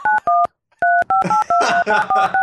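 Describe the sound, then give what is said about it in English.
A quick run of about ten phone keypad dialing tones from dialing a phone number on Skype, short clear beeps in an uneven rhythm with a brief pause after the first two, a noisy rustling background building under the later ones. “That was dialing the phone.”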